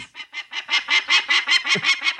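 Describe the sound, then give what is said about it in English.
Three falcon chicks hatched at the Oak Creek Power Plant give a rapid, unbroken run of harsh, raspy screeches, about a dozen rising and falling calls in steady rhythm, loud and shrill with no talking over them. “So here are the names chosen by the internets for the three chicks that were hatched at the Oak Creek Power Plant.”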